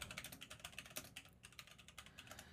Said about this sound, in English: I wasn't going to do this, which is why you hear me clacking away at my keyboard, but I do think it's important.